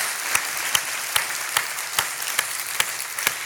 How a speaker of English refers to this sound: I love to hear you worshiping and clapping your hands and giving glory to God. Would you with me just give the Lord an applause for His grace this morning?